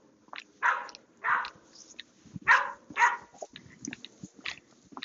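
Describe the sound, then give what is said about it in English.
Several dogs bark in loud, sharp bursts while someone is out walking a dog on a leash, four strong barks in two pairs followed by quicker, fainter yips and snaps, with no one talking. “This is like the worst part of walking my dog. Because I don't know if these dogs are friendly.”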